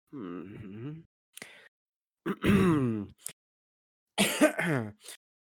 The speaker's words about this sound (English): Got a cough there? Yeah, it's fine. Is this the coughing? Can I cough? I need a cough. Oh, if you actually need a cough, go ahead.